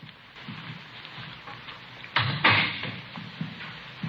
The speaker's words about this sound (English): Here we are. I'll get the door.